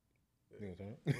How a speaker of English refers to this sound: as I clear my throat.